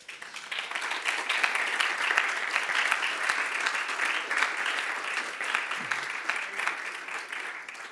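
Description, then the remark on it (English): A steady round of applause from a church audience, many hands clapping in a dense, even patter that holds at a consistent level for the whole stretch before easing slightly at the end. “And that should be get a round of applause.”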